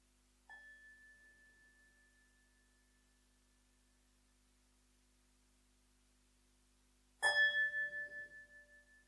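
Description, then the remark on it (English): A meditation bell is struck at the close of a meditation: a softer strike whose clear, high tone hums on for several seconds, then a louder, brighter strike that rings out and slowly fades. “And now I'll ring the bell 3 times, and on the 3rd time, if you wish to come out of meditation, you're welcome.”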